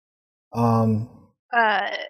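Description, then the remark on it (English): A voice imitates a tiefling character's snoring with two drawn-out, eerie vocal rumbles, a low groaning inhale followed by a higher, wavering exhale, fairly loud with a brief pause between. “Now you can hear Haiku snoring.”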